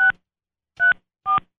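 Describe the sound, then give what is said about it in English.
Three short electronic keypad beeps from a phone being dialed, each a crisp dual-tone chirp, spaced unevenly with silence between them, clear with no talking. “I'm calling her.”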